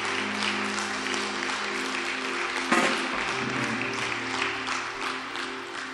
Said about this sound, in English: Why don't you appreciate the Lord with a hand clap?